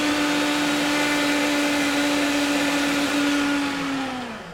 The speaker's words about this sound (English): All right, so I gotta fix this blender. Oh, this thing has been acting up now. There we go.